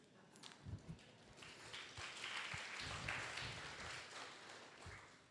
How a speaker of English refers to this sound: That clap offering is for God, not for me, because I didn't do anything. I just went along.